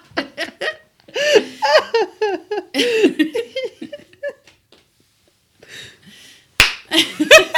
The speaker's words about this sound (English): There we go. We are high-fiving ourselves.